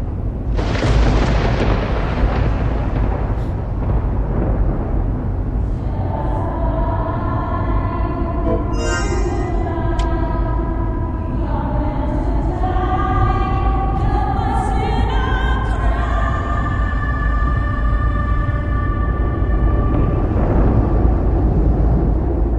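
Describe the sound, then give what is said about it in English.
An echoey, wordless vocal rendition of a video game's theme song, which replaced all of the music in the game, with long sustained notes gliding through a melody, rising over a loud, steady low rumble that follows an opening noisy burst. “Like this sort of echoey vocal rendition of like the theme song.”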